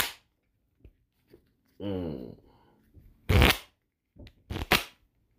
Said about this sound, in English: And before we get into episode 159, of course, I got to do my Poddex cards because this episode is powered by Poddex. So let's get the shuffling of the cards and then let's play a game of Would You Rather.